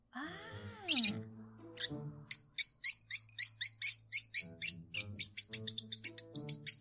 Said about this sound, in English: Oh. No, because I forgot to play it. I do have lovebird sounds.